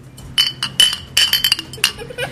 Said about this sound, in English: We did drink most of our pops. Pops. But we're going to cheers them. All right, let's cheers them.